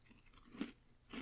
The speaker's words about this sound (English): Well, hang on. Let me have a chew on this and we'll see what happens.